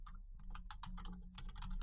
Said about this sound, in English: I'm looking. I know. I could hear you typing.